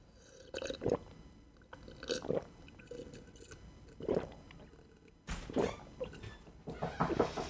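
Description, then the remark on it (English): Sips and gulps of water, a series of wet mouth and swallowing sounds spaced unevenly over several seconds, fairly quiet, with no talking. “I was just finishing up and taking a sip of my water.”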